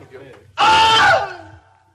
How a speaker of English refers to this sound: But here it is, the original audio from the 1950s, the unearthed Wilhelm scream audio. Man getting bit by an alligator and he screams.